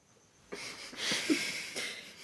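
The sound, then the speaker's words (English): A few quick, airy sniffs in a row from someone getting a cold, breathy and congested-sounding, each a short burst of hissing noise at moderate loudness with no talking. “Sniff, sniff, sniff. I'm getting a cold.”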